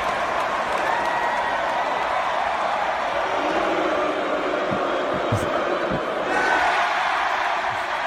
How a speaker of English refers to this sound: Whoever else they would put the camera on, the crowd would boo. And then this started to pick up in intensity.